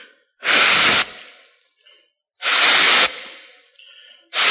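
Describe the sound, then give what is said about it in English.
Someone blows hard into a balloon in long, forceful puffs, three strong rushes of breath with short pauses between them, loud, with no talking. “See, what happens when you blow up a balloon?”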